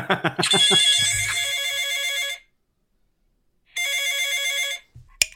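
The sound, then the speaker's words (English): A telephone rings twice with a bright, trilling electronic bell, each ring lasting a couple of seconds with a pause between, ending with a brief click as a voicemail greeting answers. “Sorry we couldn't get to the phone, but it's in Dan's front pocket. Leave a message after the beep.”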